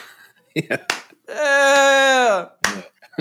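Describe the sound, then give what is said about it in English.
A lone person clapping slowly: a few sharp, isolated claps spaced well apart. Between them, a voice holds a long, steady sung note, with brief vocal sounds around the claps. “Your expression of trading notes for claps.”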